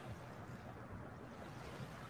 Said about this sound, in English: And we'll just take a moment to just listen to these waves behind me.